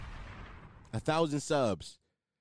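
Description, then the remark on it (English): A loud explosion and gunshot sound effect trails off in a fading, rumbling roar, then a short, strained vocal-like cry rings out briefly before the sound cuts to silence. “Bombs. Gunshots.”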